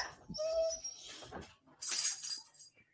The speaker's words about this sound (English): Are you kicking your dog while I'm talking about... No, he came up and he hit his eye on the table.